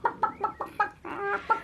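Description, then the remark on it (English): A chicken named Christmas, carried in a girl's arms, flaps and squawks: a run of five quick, sharp clucks followed by a longer, drawn-out squawk and one final cluck, loud and agitated with no voices. “Christmas flapped and squawked and almost flew out of Jamela's arms.”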